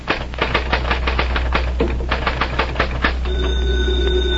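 In an office in the late afternoon, rapid, rhythmic mechanical clacking fills most of the moment, then a telephone starts ringing near the end with a steady, fairly loud bell tone. No one speaks.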